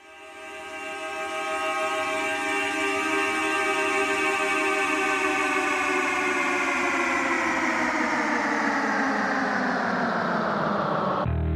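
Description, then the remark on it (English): The band's car horns, removed, mounted in a box controlled by a foot switch and slowed down, play with an echo effect. They form a loud, sustained chord of blaring tones that swells in and slowly bends downward in pitch for about eleven seconds before cutting off abruptly. “So the sound in the intro are the band's car horns, which were removed, mounted in a box controlled by a foot switch, and then slowed down.”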